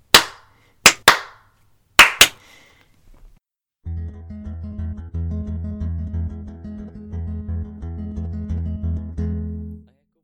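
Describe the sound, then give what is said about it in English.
Two people clap three sharp hand claps together in quick succession after a countdown, the last two slightly doubled as they are not quite in sync, then a steady sustained musical drone begins and holds. “I will count down from 3, 3, 2, 1, and then, like, at the same pace, let's do 3 claps. Like, 3, 2, 1, clap, clap, clap.”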